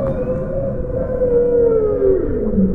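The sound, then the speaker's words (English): Beluga whales chirp, chatter and click underwater, recorded by underwater microphones, with sliding whistle-like tones and a long descending glide over a steady, noisy hiss, fairly loud and continuous throughout. “Beluga whales chirping and chattering and clicking.”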